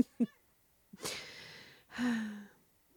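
A cat vocalizes: a brief chirp, then two breathy, drawn-out calls, the second sliding down in pitch like a low, raspy meow. No one speaks.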